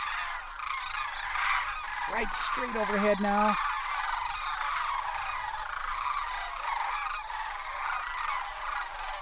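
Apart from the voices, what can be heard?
cranes calling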